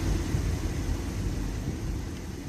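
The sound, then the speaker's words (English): A steady, muffled low rumble of road noise from inside a moving car, coming through a phone line; continuous and fairly quiet, with no one speaking. “It sounds like he's in the car.”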